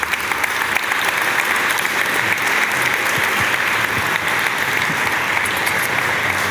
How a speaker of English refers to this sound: Thank you, guys. Warm hand of applause.